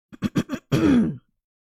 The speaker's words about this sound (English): Clear my throat before I say this.